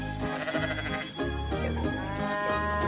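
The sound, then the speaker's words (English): A cow hiding inside a big pile of straw lets out a long, drawn-out moo, loud, with a rich harmonic drone that shifts in pitch across a few seconds. No one speaks. “They found the last cow hiding inside a big pile of straw.”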